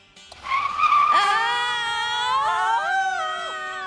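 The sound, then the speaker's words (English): A car skids with a loud, sustained tire squeal, the shrill pitch wavering and sliding for several seconds as it swerves through heavy traffic to make an exit in New Jersey. “Gonna have to make a Jersey slide to make the exit.”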